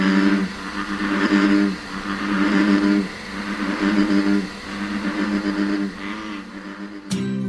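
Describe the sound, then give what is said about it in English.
Frogs croak loudly in a dense, buzzing chorus, their harmonic calls swelling and fading in rhythmic waves about every second and a half, with a sharp click just before the end. “And now, a few seconds of frogs, and then something less amphibian.”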